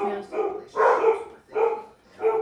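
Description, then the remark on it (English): Several dogs bark at something at the front door in a series of short, loud bursts, about four or five barks with brief gaps between them, without other sounds competing. “They bark at it.”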